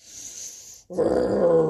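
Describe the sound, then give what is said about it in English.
A voice imitates the growl of Buster Bear: a breathy hiss, a brief pause, then a loud, rough, low rumbling growl that holds steady for about a second. “Growled Buster Bear.”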